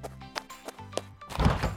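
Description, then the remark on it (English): A refrigerator door is handled as someone grabs a snack from the fridge: several soft thunks and clicks, a low steady hum partway through, then a louder rustling thud as the door swings and shuts. No one speaks. “I'll tell you what I like to eat for dinner and dessert right after I grab myself a snack from the fridge.”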